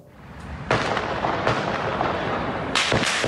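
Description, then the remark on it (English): Heavy gunfire rings out through the streets of Vienna, Austria, during a coordinated terror attack by multiple assailants, a few sharp, loud bursts about a second apart over a constant reverberant roar, with no voices. “Heavy gunfire rang out on the streets of Vienna in what the Austrian chancellor called a repulsive terror attack, a coordinated assault by multiple assailants not far from the city's main synagogue, six different locations.”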